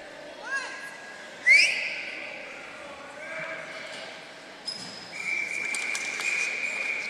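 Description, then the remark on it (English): A referee's whistle sounds at an ice hockey game in a noisy arena before the puck is dropped again, shrill, sustained blasts rising over steady crowd murmur, the last one long and clear near the end. “And whistle, they'll drop this one again.”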